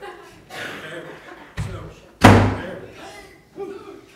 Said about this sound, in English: If I don't shut this door, it'll drive me crazy.